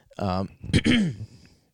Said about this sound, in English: Now this one, oh boy. Patrick coughing, you know, he's drowning because he can't breathe. He can't breathe air. He's in Sandy's tree dome.